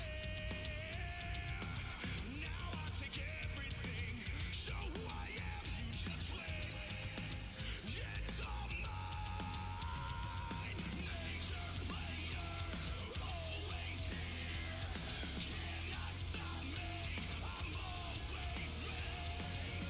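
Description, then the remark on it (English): A man's voice yells loudly over steady, driving early-2000s rock music, the shouting running almost continuously and sitting prominent in the mix throughout. “You know, if they'd stop playing the music, I'd like to hear what he's yelling at him.”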